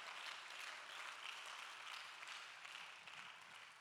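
audience hand clapping

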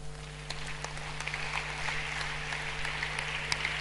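audience clapping

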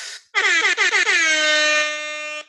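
air horn sound effect

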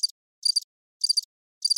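cricket chirping sound effect

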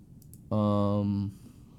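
sleeping dog yelping

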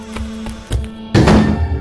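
door being pushed open

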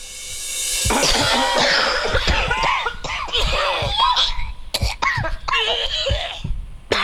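coughing

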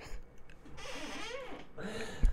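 squeaking chair

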